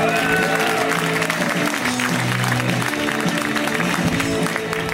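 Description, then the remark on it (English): A live comedy show audience applauds steadily and loudly for the full stretch, welcoming the next comic to the stage, a dense wash of clapping with some crowd noise, while sustained musical tones play underneath. “Please give a warm welcome”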